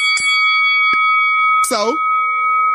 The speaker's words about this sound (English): Now, ring the bell, please.